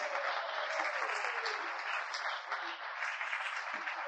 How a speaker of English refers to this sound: Oh, let's clap our hands to the glory of God. Hallelujah.